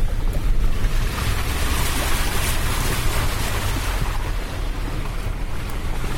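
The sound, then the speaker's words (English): A car drives through deep water, making a loud, continuous rushing and sloshing roar that holds steady for several seconds, with no voices. “More water. How deep is this?”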